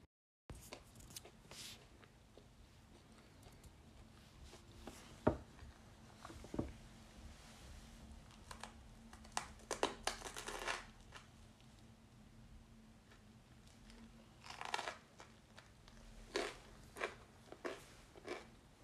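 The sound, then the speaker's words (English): Munching and chewing, with irregular crunchy bites and wet smacking sounds repeating throughout over a faint steady hum. Nobody speaks. “A lot of it's me munching.”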